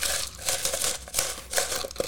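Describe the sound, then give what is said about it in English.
Ice cubes are scooped and dropped into a glass in a run of dense, crunchy rattling and crinkling bursts lasting about two seconds, fairly loud and with no voices. “So, guys, I'm just going to top my glass off with ice and fill her up.”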